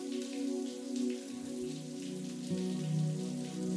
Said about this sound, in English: Luxuriate in the temperature and the flow of water that feels exactly right for you in this moment.